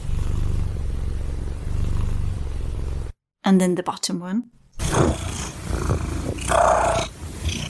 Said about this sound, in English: And then we have a trill again, which is merged with purring. And then again, the inhalation phase.